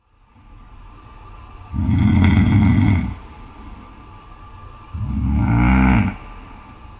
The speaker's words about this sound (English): He was once proud of the fact that he didn't snore, but now it's at the point where he's recording his snoring for strangers on a podcast. Needless to say, he needs help.